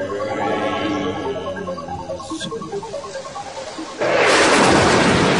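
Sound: thunder and rain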